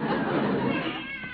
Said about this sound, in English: Seems I can still hear that darn cat.